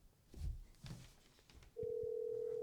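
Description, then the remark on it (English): A few soft clicks and handling thumps, then a telephone line tone starts up, a steady, loud, unbroken hum held to the end as a call rings through. “I'm going to try Knowles. Is it ringing?”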